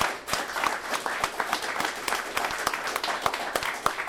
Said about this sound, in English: Can we do a quick round of applause for our first three readers? Because they were fucking awesome.